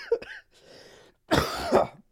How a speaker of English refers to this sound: You're making me cough more.